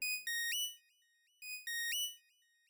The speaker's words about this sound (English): The little escort leading you, which is this little chroma ship, slows down, and then your console crackles as it hails you.